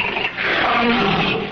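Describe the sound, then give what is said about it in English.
A starved, very hungry lion in a cage beneath an amphitheater lets out a single loud, rough roar, sustained, with a broad growling rasp that swells and holds before trailing off. “In a cage next to mine roared a very hungry lion.”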